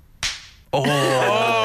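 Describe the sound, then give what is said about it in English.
A single sharp, powerful slap cracks out loud, ringing briefly before a short pause, then a loud sustained voice-like cry follows and holds to the end. “It's such a powerful slap.”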